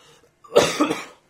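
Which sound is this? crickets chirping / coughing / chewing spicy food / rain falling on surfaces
coughing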